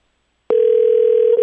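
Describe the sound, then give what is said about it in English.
After a brief silence, a steady electronic phone ringback tone begins on an outgoing call to the Atlanta Falcons and holds unbroken to the end, fairly loud, with no voices. “It's ringing.”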